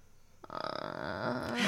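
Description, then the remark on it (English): A voice makes a drawn-out, creaky vocal fry that imitates a door creaking open: a rough, ratcheting rasp that starts abruptly and swells louder over about a second and a half. “I sound like a door being creaked open.”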